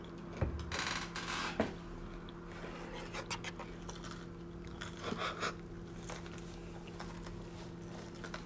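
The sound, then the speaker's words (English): Someone chews food, with irregular moist, slightly crunchy bites and mouth sounds over a steady low hum, no talking. “For next question, as you're chewing.”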